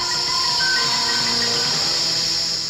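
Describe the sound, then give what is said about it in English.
A loud, steady snake hiss from a horror film trailer runs unbroken for the whole clip, bright and airy, with faint sustained tones humming underneath. No one speaks. “And listen for the hissing.”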